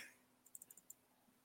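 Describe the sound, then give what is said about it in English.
A quick burst of typing on a computer keyboard, about six crisp keystrokes in rapid succession, fairly quiet, with no voices around it, as a question is typed into a Google search. “I'm typing in. I want to ask Google, is Taiwan a country?”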